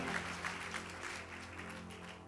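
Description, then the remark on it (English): An audience clapping together, a dense, steady patter of many hands that holds at an even level for a couple of seconds, with a low hum underneath and no voices. “Those who are clapping, it has happened for your family.”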